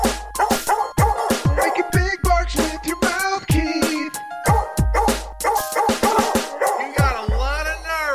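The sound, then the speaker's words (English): A rapid, loud series of yapping barks, apparently a person imitating a dog with their mouth, with short harmonic yelps and whiny tones repeating. “Make it big barks with your mouth, ….”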